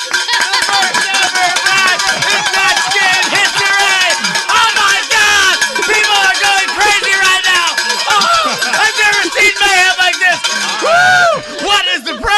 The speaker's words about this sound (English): More cowbell. Oh, my God. More sound effects.